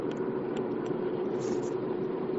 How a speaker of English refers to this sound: Their car noises. Your vehicle's making noise.